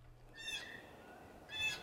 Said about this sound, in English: I was going through, I can hear some geese. Two geese.